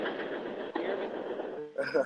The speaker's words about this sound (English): Can y'all hear me over the train?